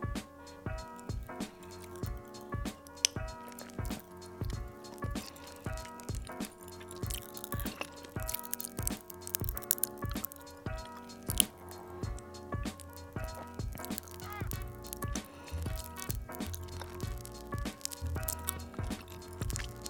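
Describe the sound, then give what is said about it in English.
Wet mouth sounds after a sip of a fizzy drink with Pop Rocks popping candy in the mouth, with steady crackling and popping, plus squishy, drip-like clicks running continuously. No one speaks. “I don't know if any of you caught that, but if you can hear just a bit of like sparkly noises going on in my mouth, that's Pop Rocks.”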